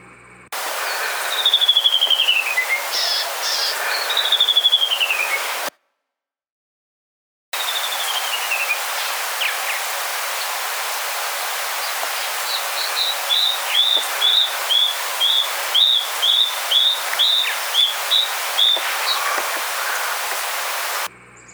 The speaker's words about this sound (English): Grab your ID guide and find the canyon wren as we play their call.